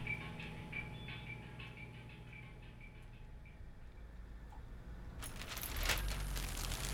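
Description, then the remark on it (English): Keys jingle and clink in a series of light metallic taps as someone tries to open a door, then a louder, busier rattle and scrape of metal near the end, with no voices. “Come on, fuck. Open. Where are my keys?”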